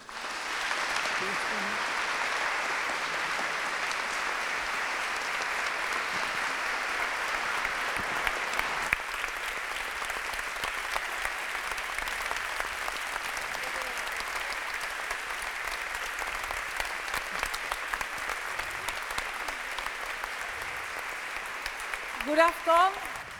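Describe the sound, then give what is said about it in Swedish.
Sustained applause from a large audience filling a hall (aula) from floor to ceiling, welcoming the evening's moderator, a journalist at Sydsvenskan, and the other guests: a dense, even wash of clapping that holds steady for over twenty seconds, with a few brief louder bursts and a voice briefly audible near the end. “Men innan jag gör det så vill jag att vi alla välkomnar henne och de övriga gästerna med en varm applåd.”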